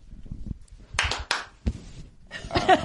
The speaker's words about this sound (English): Let's clap.